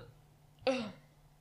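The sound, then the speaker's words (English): One abrupt hiccup bursts out, short and sharp, then fades quickly into quiet background hum with no talking around it. “Sorry, hiccups.”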